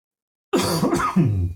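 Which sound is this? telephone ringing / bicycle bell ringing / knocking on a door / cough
cough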